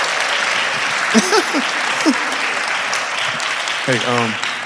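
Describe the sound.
A crowd applauds steadily and loudly throughout, with a few scattered whoops and voices rising briefly above the clapping.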